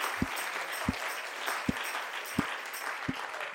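An audience claps hands to the Lord together in a steady, slow rhythm, five sharp unison claps about once every 0.7 seconds over a continuous wash of scattered clapping and crowd noise.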